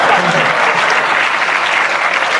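Steady, dense applause from a large audience, loud and continuous throughout, a broad wash of many hands clapping with no individual claps standing out.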